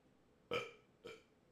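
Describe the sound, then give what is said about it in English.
Two quick, throaty burps in a row, fairly loud, the first stronger and the second shorter, with no talking. “I got a burp.”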